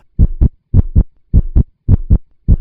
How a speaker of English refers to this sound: There's this continuous Pulsar heartbeat, yeah, which I think is a really good way to kind of get your adrenaline going.